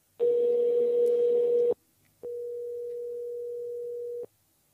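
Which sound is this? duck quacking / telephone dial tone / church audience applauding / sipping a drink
telephone dial tone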